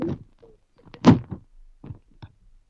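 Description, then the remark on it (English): A microphone gets knocked off a table: a loud, dull thunk followed by a few softer bumps and rattles as it settles, with no talking. “You got so excited about answering this question, you slapped your mic off the table.”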